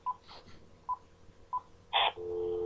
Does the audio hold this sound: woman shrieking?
no